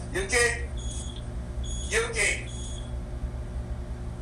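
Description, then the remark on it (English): A smoke alarm, set off when a door was opened, sounds in two short bursts of high, shrill beeping about a second and a half apart, set against a steady low hum. “Sorry, she opened the door and it set off the smoke alarm there.”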